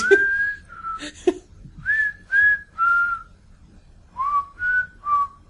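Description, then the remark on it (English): Someone whistles a short melody, clear sliding notes in two phrases: a few held tones, a pause, then three more quick notes. No one speaks. “Or if Jesus was whistling.”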